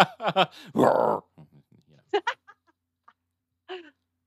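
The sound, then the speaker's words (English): Someone imitates a bear growl with their voice: a few short gruff bursts, then a longer raspy growl, followed by scattered quieter vocal noises and one more brief growly sound. “There's a bear Growl.”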